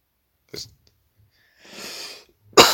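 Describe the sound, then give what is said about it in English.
Coughing: a short cough, then a raspy, wheezing breath, then a loud, harsh burst at the end. No talking. “I should have brought cough drops.”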